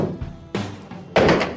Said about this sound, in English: I'm going to put my axe to good use and cut a little bit of that Munster cheese and that eggplant